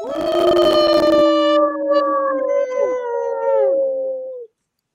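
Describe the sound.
Several people howl together like wolves, overlapping sustained wavering howls that rise and slide, loud, lasting about four seconds before cutting off abruptly.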